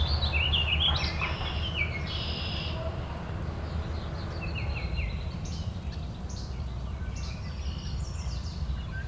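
A least flycatcher gives short, sharp chirping calls in repeated bursts over a steady rumble of low background noise. No one speaks.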